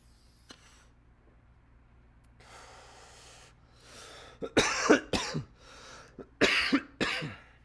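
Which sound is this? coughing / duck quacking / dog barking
coughing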